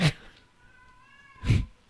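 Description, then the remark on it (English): A cat meows twice, a short loud call at the start and another about a second and a half later, with a thin, quiet tonal whine lingering between them. No one speaks. “Pandora says fact, too. That's a satisfied kitty.”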